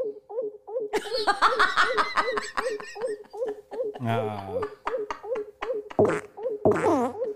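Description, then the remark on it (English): Recorded farts of a woman play back, including a low, buzzy rip near the middle and a couple of short blasts near the end, while people laugh loudly over a steady ticking rhythm. “Those are her farts.”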